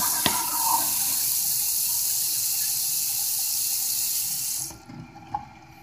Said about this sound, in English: Putting the phone down so I can wash my hands.